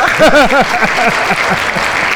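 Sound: audience clapping and applause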